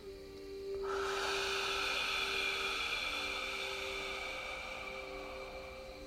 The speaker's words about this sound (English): When you're exhaling, pretend you've got a candle about 3 foot away from you that you're trying to blow out. That's about a meter in Australia. So let's try that again. Breathing in through the nose for 5 and exhaling for 7 seconds.